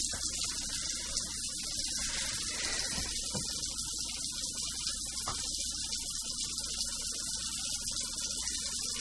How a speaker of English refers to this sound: I'm gonna fill the sink up with water.